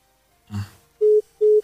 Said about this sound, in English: In fact, the phone lines are not connecting at the moment. But do try again so we can get your thoughts this morning.